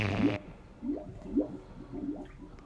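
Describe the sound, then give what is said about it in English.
Water gurgles and bubbles in a filling toilet bowl, a short watery burst followed by several low, glugging pulses at an uneven rhythm, moderately quiet, with no talking. “The toilet's bubbling now.”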